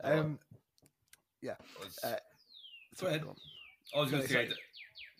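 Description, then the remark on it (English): Birds tweet in the background with a few clear, descending whistled chirps, fairly faint and spaced out, while people talk over them in the foreground. “I can hear birds tweeting in the background.”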